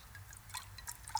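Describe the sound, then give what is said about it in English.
Quiet white wine pouring into a glass, a brief trickle with small splashy drips and faint glassy tones over a low background hum, with no one talking. “Some white? Yeah, please.”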